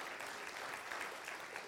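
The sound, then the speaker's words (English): A crowd claps together during a church sermon, clapping to thank Jesus, in a steady, dense wash of applause at an even level, with no voices standing out above the clapping. “Won't you clap your hands and say, thank you, Jesus.”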